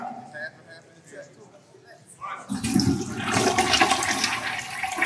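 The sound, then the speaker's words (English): A toilet flushes loudly partway through, a sudden rushing, gurgling surge of water that keeps going to the end, preceded by a couple of seconds of quiet, faint background murmur. “we flushing it or flipping?”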